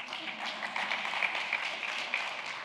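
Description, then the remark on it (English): A crowd claps, a dense, steady patter of many hands filling the whole moment at moderate volume, with no voices over it. “You can clap, go ahead.”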